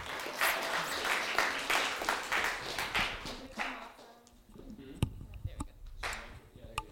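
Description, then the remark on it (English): An audience breaks into applause, a dense wash of many hands clapping for a few seconds, then thinning out into scattered claps and a few sharp isolated taps as it dies down. “please give a warm round of applause for Miss Corey Carmody”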